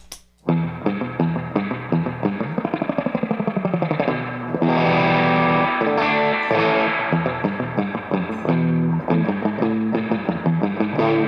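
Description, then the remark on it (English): A twangy electric guitar plays a fast surf-rock riff with quick picked runs and a glissando through a solid-state amp, drenched in splashy spring reverb from an FRV1 reverb unit, loud with no talking. “Here, we'll throw a little reverb on here, my FRV1.”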